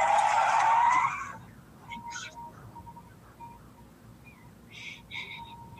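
A malfunctioning car skids out of control with a loud, harsh tire screech for about a second, then fades into faint, scattered squeaks and chirps over a low rumbling background.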